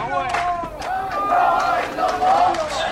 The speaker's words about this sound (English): We entered Reef Damask. Everywhere we went, there were people demonstrating on the streets. Death rather than humiliation.